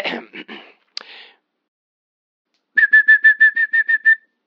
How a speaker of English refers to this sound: Next, the yellow-tailed black cuckoo from Australia, whose song can range from soothing to rather eerie.